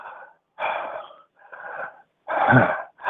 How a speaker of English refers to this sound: She spoke to me to know that the sounds of my breathing was increasing.